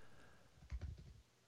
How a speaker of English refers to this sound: I hear you typing over there.